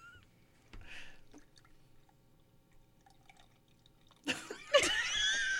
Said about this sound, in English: This is like the slowest pissy pour of a beer.